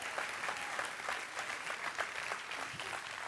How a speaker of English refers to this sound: Amen. Now give God a hand clap of praise this morning.